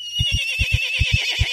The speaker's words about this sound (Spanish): El equino se asustó tanto que relinchó